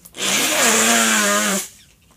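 human body sound, nose blowing

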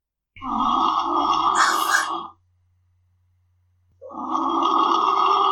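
animal, dog snoring

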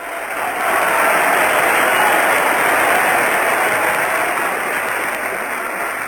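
crowd, theatre audience applause

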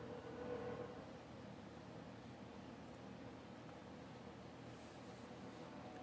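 vehicle, train passing at night

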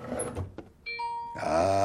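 signal or alarm, phone beeping

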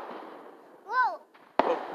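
sound effect, fireworks exploding

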